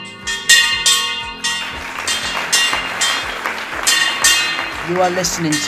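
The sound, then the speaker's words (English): A hand bell rings steadily with quick repeated strokes, its bright metallic tones sustaining throughout, while a crowd murmurs and claps underneath. The bell is rung to start the Rural Youth Europe rally in Germany. “We have to ring the bell to start the rally,”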